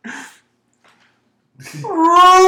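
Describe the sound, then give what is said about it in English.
A person imitates the roar of Alex the Lion from Madagascar: a brief gruff vocal burst, a short silence, then a loud, sustained, strained roar that rises and holds a strong tonal pitch until the end. “He goes, ladies and gentlemen, if you don't know what's going on right now, we're doing just Alex the Lion from Madagascar.”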